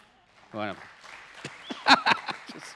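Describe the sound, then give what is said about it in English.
A brief vocal sound, then scattered, uneven handclaps from a church audience during a sermon: sparse, sharp claps of varying loudness that never build into full applause, peaking briefly before trailing off. “Clap for the...”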